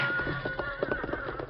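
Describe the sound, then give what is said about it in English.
Horse hooves clatter in a quick, steady trotting rhythm as a horse pulls a buckboard away, moderately loud over a sustained tonal background. “The horse is with the buckboard.”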